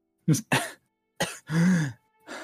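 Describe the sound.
A voice imitates a young boy's fit of coughing and hacking: two quick harsh coughs, a pause, then a sharp cough and a longer rasping, throaty heave, ending in a final short cough, clear.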